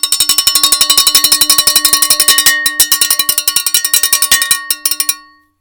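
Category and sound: signal or alarm, school recess bell ringing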